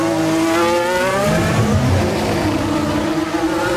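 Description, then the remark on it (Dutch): Russell's Formula 1 car's engine screams past, its loud high-pitched whine sliding in pitch as it goes by, with no voices over it. “En dan helemaal aan het einde van de shot zie je een flart van de auto van Russell komen.”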